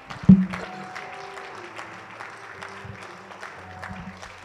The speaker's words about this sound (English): One more time, would you clap your hands and love Jesus?